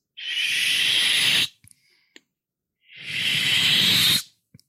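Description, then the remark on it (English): Two long, steady hissing swishes, each lasting over a second with a pause between, are imitated by a voice to mimic a woman sliding a big cardboard box across a floor around 9 to 9:30 in the morning, followed by faint clicks. “This big ass fucking cardboard box. She's sliding.”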